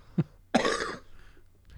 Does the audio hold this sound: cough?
yes